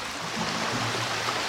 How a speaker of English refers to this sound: Now let's bring in the ocean.